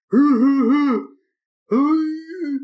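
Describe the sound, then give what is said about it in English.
A voice imitates the guttural screams of SpongeBob and Patrick from the SpongeBob cartoon, in two drawn-out, wavering bursts separated by a short pause, loud, with no other sounds. “And every time he takes a huge breath and is about to play, we just hear these guttural screams from SpongeBob and Patrick.”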